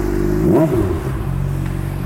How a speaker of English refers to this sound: Motorcycle.